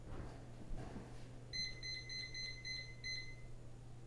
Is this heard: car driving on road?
no